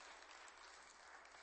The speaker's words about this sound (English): Amen. Go ahead and clap. You can clap.